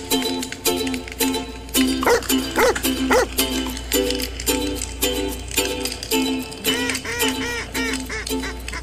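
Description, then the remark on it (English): A bird dog barks over and over in quick, excited bursts of short, sharp, high-pitched yelps, loud and steady for the whole stretch, with no one talking. “So if you like sitting around a campfire with your favorite bird dog and two brothers from Michigan who love talking about upland hunting, this podcast is for you.”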